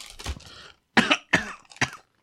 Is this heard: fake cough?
yes